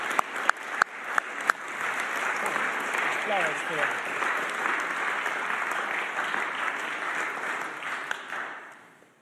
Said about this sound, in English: So can we give them a big round of applause?